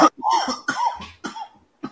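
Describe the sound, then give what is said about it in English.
A person coughs repeatedly, about five or six harsh, throaty bursts in an uneven rhythm, fairly loud, with no speech. “I keep coughing, drinking water.”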